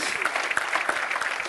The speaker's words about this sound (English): Somebody clap your hands and say amen. Will you do that?